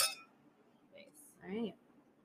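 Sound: drinking glasses clinking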